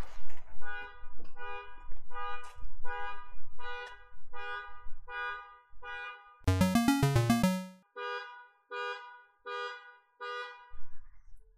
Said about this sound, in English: It's a car alarm going off.